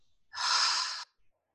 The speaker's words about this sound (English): Okay, so let's take one deep breath in through the nose. Hold it. And then drop it like a big sigh.